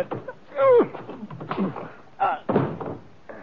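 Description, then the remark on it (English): A sharp, loud punch lands early, followed by a grunt and scuffling thuds as a man falls, with brief muffled voices and a few smaller knocks. “you knocked him off.”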